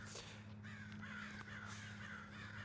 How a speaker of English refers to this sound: Yeah, those crows are... You gotta stop. If you guys can hear that, comment, I hate crows or I love crows.